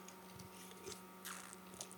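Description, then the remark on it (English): Quiet mouth sounds of someone sipping beer: a few soft slurps and a swallow spread over two seconds, with no talking. “Anyhow, I need another sip of beer.”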